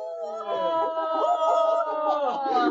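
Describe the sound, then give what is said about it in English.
A voice lets out a long, wavering, high-pitched victory screech after a correct answer in a Harry Potter Hogwarts trivia quiz, held steadily for nearly three seconds with a howl-like, sliding tone and no words. “Victory screech.”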